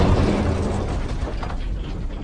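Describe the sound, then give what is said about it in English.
A loud explosion of cards, set off by pressing the diamond on a necklace to send an SOS signal, with a dense, rumbling roar that stays heavy for a couple of seconds and only slowly begins to fade, with no voices present. “This method allows you to spread out your explosion, and if ever a casual observer picks up one of the cards, the result will still be devastating.”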